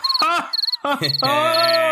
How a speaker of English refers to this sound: yeah, I'm putting crickets in there. I'm putting crickets in there, 100%.